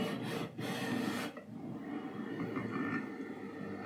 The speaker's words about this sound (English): I'm going to plunge the coffee now.